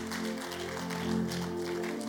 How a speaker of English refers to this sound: Everyone shall shout a big amen and give God a good clap. Please take your seat wherever you are. I wish that clap came up again for Jesus.